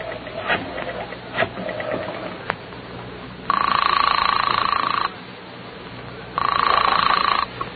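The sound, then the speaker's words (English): A telephone being dialed to call the police: a few faint mechanical clicks, then two long, steady buzzing ring tones with a pause between them, fairly loud, with no talking. “Then, with none too certain fingers, he dials the police.”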